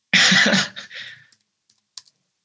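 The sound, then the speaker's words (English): Close-up typing with one finger on a computer keyboard held up near the microphone while searching online: a dense, loud clatter of keys for about a second, then a few sparse, isolated taps with silence between them. No one speaks. “See, what I'm going to do, I'll bring my keyboard closer to the microphone as well so that people can hear me Googling as well.”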